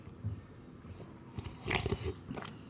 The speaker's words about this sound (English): Ooh, it's hot. I'm going to go in for a second sip.